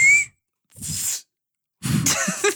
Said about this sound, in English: See, I can't whistle for nothing. You really can't whistle.